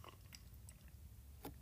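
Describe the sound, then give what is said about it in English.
Someone sips coffee: a few soft wet mouth clicks and small slurps spaced across the moment, quiet against a low steady background hum, with no one talking. “Okay, coffee sip, hang on.”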